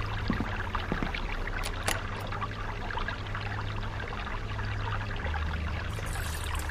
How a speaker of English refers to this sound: Eris, give me some kind of soothing noise. A creek. Good. Babbling brook.